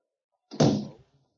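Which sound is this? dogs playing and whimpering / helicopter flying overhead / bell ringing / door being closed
door being closed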